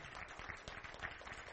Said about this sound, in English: Let's give them a big hand of applause. Can we do that?